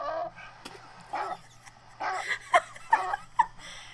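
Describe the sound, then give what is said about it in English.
Dogs bark and yip in a string of short, irregular bursts, moderately loud, the yelps getting sharper toward the end over a faint steady hum. “Get those dogs under control.”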